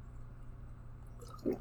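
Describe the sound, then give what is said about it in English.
A quiet sip from a bottle of Skyra Icelandic spring water, alkaline with pH 8.88, near the end: a brief wet gulp after a short liquid slosh, over a low steady background rumble with no talking. “But drink of choice for the episode, we got a bottle of Skyra Icelandic spring water with 8.88 pH alkaline.”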